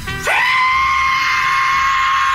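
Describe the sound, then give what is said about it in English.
A voice imitates the screeching whistle of a plane going down: one loud, piercing tone that swoops up quickly, then holds steady and shrill for about two seconds without a break. “In the bathroom taking a shave, and I heard a screeching, solid between a screech and a whistle.”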